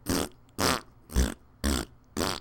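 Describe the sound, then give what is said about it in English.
Someone blows five raspberry-style fart noises with their mouth, evenly spaced about half a second apart, each a loud, sputtering burst with nothing else in between. “I was just thinking how great it would be if you could do a fart noise instead of I'm so good.”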